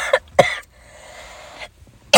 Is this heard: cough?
yes